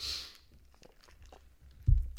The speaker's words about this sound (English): then you got me crunching ice in your fucking ear